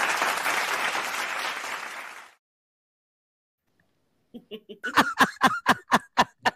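A burst of dense clapping fades out, then after a short silence a single person claps about ten sharp, evenly spaced times, growing louder. No talking.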